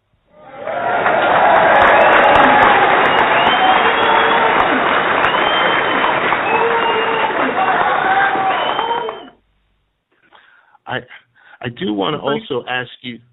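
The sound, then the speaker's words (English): A loud, sustained round of applause with a dense wash of clapping and a few cheers running for about nine seconds, stopping abruptly before a person starts speaking. “We want to give you a one-time round of applause.”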